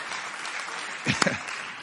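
An audience applauds with a steady, dense patter of many hands clapping, swelling briefly with a few sharper, louder claps before settling back into the even applause.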